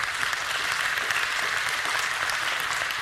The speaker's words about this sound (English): And he said, praise God. You can clap for that.